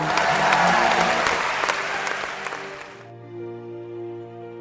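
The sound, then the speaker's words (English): A large crowd cheers, roars and claps in a loud, dense wash of noise for about three seconds, then it cuts off abruptly as steady, sustained musical tones take over. “She Roars, can I hear you roar one more time?”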